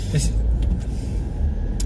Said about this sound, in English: It comes with a radio, but if you ever, ever put that radio on, if you listen to anything other than that engine, then you don't deserve that car.